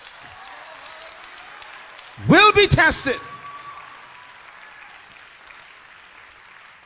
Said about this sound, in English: Come on, clap your hands and shout for a second.